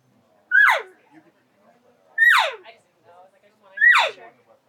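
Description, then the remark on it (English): A hunter vocally imitates a cow call three times, each a short, nasal, high-pitched bleat that slides quickly downward, spaced evenly with quiet gaps between. “Without covering your mouth, bring up the volume of the cow sound.”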